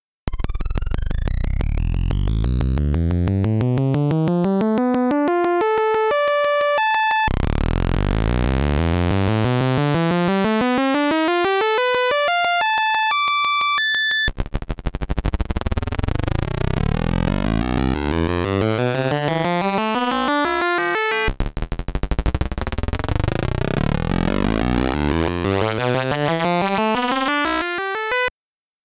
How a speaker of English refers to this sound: It's a couple envelopes scaling from their lowest pitch up to their highest pitch, and then you hear it all again, but combined with a tone generator